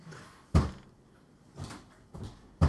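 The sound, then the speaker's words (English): Repeated heavy thuds and rattling bangs as someone inside a car tries to kick open the trunk door, which is trapped under snow: four sharp impacts spaced unevenly, with scraping and clatter between them, forceful. “I'm going to go try and get out the trunk again.”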